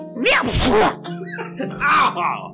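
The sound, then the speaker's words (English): A voice acts out a big, wet sneeze, as a creature sneezes after pepper is sprinkled on its nose: a sharp explosive burst, then a second spluttering, snotty sneeze-like sound about a second later. “He sneezes all over you.”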